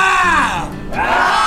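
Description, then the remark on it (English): A crowd of audience voices yells together in one loud, sustained group scream, pitch sagging briefly in the middle before swelling back up, filling the whole moment. “Just, can we all just have one little scream together?”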